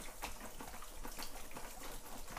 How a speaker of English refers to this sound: I'm going to put a little cold water on it. You don't have to do this, but I'm gonna do a little bit of it.